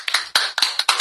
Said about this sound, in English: Pause for applause.